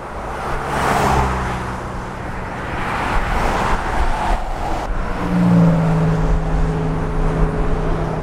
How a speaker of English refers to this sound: I never thought I would see this much traffic in Calvert County. I really didn't.